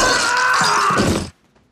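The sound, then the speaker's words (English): Glass from a glass trap shatters loudly, a bright crashing spill of shards lasting over a second before cutting off abruptly into near silence. “They even almost fall for the glass trap.”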